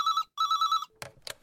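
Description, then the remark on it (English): A telephone rings in two warbling trilled bursts, clear, followed by a couple of clunky clicks as the handset is picked up. “This time, Summer picked up the phone, and let me tell you, she went right to it.”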